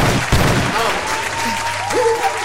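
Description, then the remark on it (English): An audience claps steadily in a dense, continuous wash of hand claps, with a few voices and faint tonal sounds poking through the applause. “Hand claps, look, hand claps, hand claps. Where's the hand claps?”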